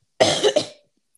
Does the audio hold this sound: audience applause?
no